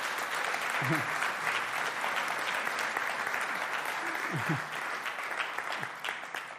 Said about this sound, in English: Thank you so much for who you are and what you do for us. Can we just give a big round of applause to people that serve, yeah?